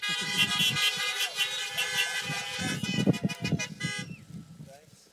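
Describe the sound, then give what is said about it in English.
Several car horns blare together in a long, sustained chorus for about four seconds at a church in an industrial area, then cut off, with voices and background commotion underneath. “This is why having a church in an industrial area actually works good, because all the honking does not upset anybody, right?”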